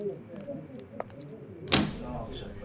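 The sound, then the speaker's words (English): A door of a workman's club opens: a few light clicks from the latch, then a sharp whoosh of movement that fades quickly, with low indistinct background murmur throughout. “Just open the door and please don't kick up too much of a fuss.”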